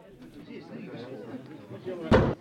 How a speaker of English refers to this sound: Push the door harder, it's swollen with the rain.